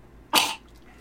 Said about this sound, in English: Excuse me. Clear your throat. Got it.